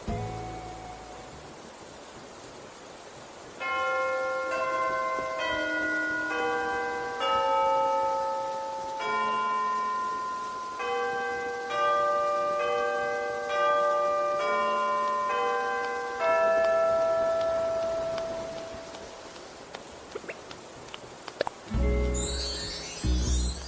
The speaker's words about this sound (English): At the top of each hour, the current song that's playing will conclude. The clock tower in the village plaza will chime, then the next song will begin.